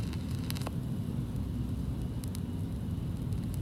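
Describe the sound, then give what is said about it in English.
Vinyl record needle crackle as the needle is dropped on the record: a steady, fairly quiet surface hiss over a low rumble, broken by a few sharp scattered pops and clicks, with no music or voices. “Well, right when you drop it, too, it kind of crackles and then mm-hmm.”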